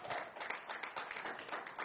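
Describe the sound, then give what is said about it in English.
An audience claps their hands together as a clap offering to Jesus, a steady, dense wash of overlapping claps, fairly soft, continuing without a break and with no clear speech over it. “Give a clap offering unto Jesus.”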